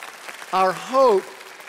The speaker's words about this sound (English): Our hope, yes, you can clap for that.